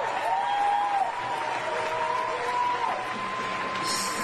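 A crowd claps steadily and loudly for several seconds, a dense, sustained wash of applause with a few whistles and cheers rising over it.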